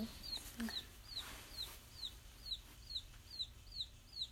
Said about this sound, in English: Let's say a haiku about our little millefleur duco hens.